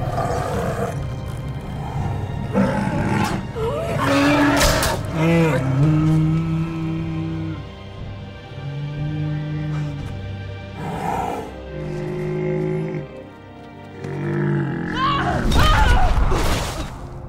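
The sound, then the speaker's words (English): A deep, guttural monster roar rises and falls in long groaning waves, with rasping bursts and pained bellows, growing loud again near the end as a dying cave troll, taken down by Legolas with two arrows shot up into its mouth, cries out. “The sound the cave troll makes when it's dying, I think is like a beautiful piece of sound engineering.”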